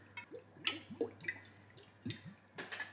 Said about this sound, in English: So first of all, I'm gonna start off by taking out this extra virgin olive oil and just putting it all over the vegetables and all over the chicken.